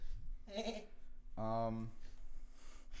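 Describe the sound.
A voice imitates a goat bleat twice in quick succession: a short nasal bleat, then a longer, louder, wavering one, over a low background hum.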